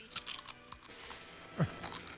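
A crisp crunching movie sound effect, a quick series of brittle cracks and snaps over a couple of seconds, with one louder crunch near the end; no one speaks.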